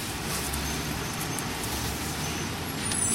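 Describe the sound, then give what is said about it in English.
A steady wash of city traffic noise in a traffic jam on 58th Street, heard while traveling east, with idling engines and a low rumble from cars, buses and trucks, plus faint hisses like air brakes. “We're traveling now across 58th Street, heading east. We're in a traffic jam, not unusual this time of year.”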